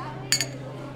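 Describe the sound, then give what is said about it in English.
Ice cubes clink twice against the side of a glass in quick succession as they are twirled, bright, over a low steady background hum. “Tully took a moment to stare at McAllen before he gave the ice cubes a twirl in his glass.”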